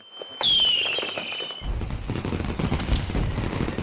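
A firework whistles up with a high, falling shriek, then bursts into a dense, continuous crackle of popping explosions that fills the rest of the moment.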